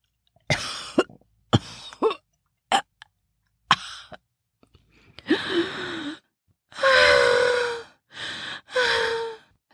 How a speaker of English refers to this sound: … coughed, gasped.